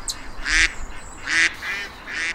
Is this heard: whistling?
no